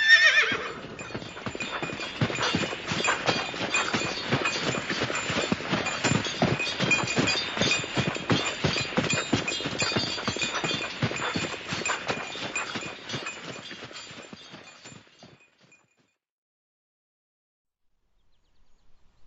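Steady clip-clopping of the hooves of Cookie's horse with the buckboard in a brisk, even rhythm for about fifteen seconds, opening with a horse's whinny, then stopping abruptly into near silence.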